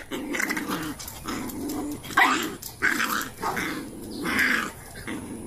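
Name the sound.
dogs growling and barking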